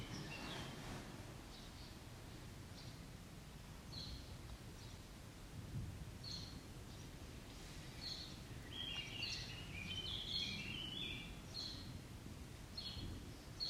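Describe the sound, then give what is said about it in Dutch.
Birds chirp and twitter intermittently outdoors, growing busier toward the end, over a steady low rumbling background like thunder or wind. No one speaks. “Even the birds are happy for you.”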